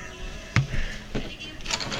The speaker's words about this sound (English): We need to close the door for this, though.